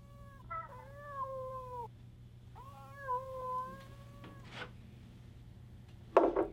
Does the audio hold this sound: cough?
no